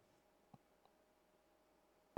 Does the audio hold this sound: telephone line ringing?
yes